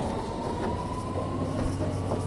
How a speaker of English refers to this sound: Thankfully, the tube has arrived, reasonably empty.